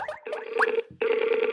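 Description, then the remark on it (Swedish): A telephone ringing tone as a call is placed to Jusso Pulliainen, an agent in Finland: two steady, buzzy mid-pitched tone pulses separated by a short gap, fairly loud and with no voices over them. “Så vi tar och ringer Jusso Pulliainen.”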